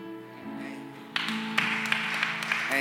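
An audience breaks into hand clapping about a second in, a dense, steady wash of many hands with a few sharper, louder claps standing out, over a low sustained musical drone.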